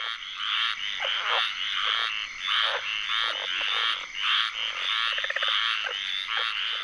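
A dense chorus of tree frogs calling together in a swamp in Apalachicola, Florida, recorded by Lang Elliott and Ted Mack for their Voices of the Swamp CD, with overlapping rhythmic croaks and trills pulsing steadily and loudly throughout, no voices present.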